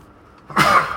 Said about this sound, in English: I have a sneeze coming on.